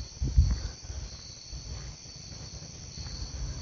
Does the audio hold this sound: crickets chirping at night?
yes